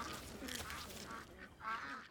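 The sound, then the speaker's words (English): A small flock of farm ducks quacking in a steady, overlapping chatter of nasal calls, with one louder burst of quacks near the end and no talking. “Oh, and as for that snail problem, in just one season, our ducks ate over 96,000 snails, turning the snails into nitrogen-rich duck poop, adding yet another layer of fertility to regenerate our soils.”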